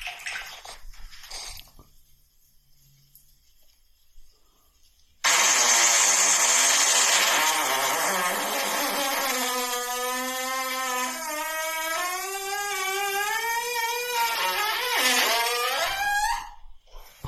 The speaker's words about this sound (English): Different tone. Starts off deep, gets high. And that, you think it should have been 5 seconds less. A normal, like a good fart would be 5 seconds less than that.